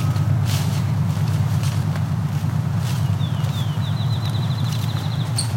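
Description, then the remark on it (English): A field sparrow sings its accelerating call in tall grass prairie in the Dundas Valley along the Niagara Escarpment: a run of clear, high whistled notes quickening into a rapid trill, over a steady low rumble of passing cars and faint crunching steps. “That accelerating call you're hearing is a field sparrow right now in the tall grass prairie.”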